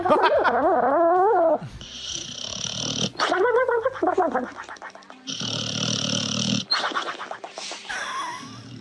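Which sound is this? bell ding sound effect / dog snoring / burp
dog snoring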